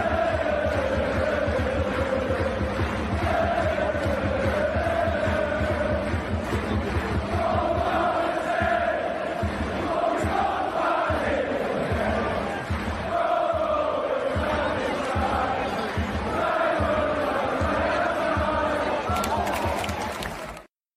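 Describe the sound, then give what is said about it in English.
A large crowd of away football fans sings a chant in unison in a stadium while their team is 4-1 down, the melody rising and falling in repeating phrases over a dense, loud roar of many voices, with rhythmic claps or stamps underneath. “It was an unbelievable away crowd, both visually and audibly. And I mean, listen to this at 4-1 down as well.”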